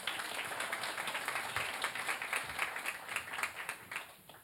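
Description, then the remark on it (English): A small audience at a ministry gathering claps steadily for a few seconds for a woman who has stood up, a dense patter of many hands that stays even throughout, with no talking over it. “Can we give her a clap quickly?”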